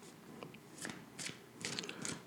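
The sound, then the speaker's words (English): A deck of tarot cards being shuffled, a series of crisp papery riffles and soft slaps in irregular bursts, ending with a louder flurry; no one speaks. “Shuffle in.”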